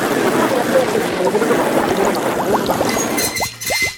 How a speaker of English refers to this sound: Then take the hose that is on the back of the Dishnaz and screw it tightly onto a neighborhood fire hydrant. Then simply turn that wrench and let the water flow.